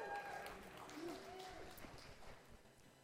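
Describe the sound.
An audience clapping: a soft, dense patter of many hands for about three seconds, steady then thinning slightly at the end, with faint murmuring voices underneath.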